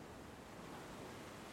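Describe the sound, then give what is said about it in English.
Steady ocean surf washes onto a shore, a broad continuous rushing roar with a soft swell, fairly quiet and unbroken, with no voices. “I stand here watching these waves and I just don't know what I'm going to do without you.”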